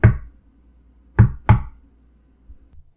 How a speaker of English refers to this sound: Without bothering to check his watch, he approached and knocked on the red door. It could only be opened from the inside, and only then, if he didn't make a mistake during the knock.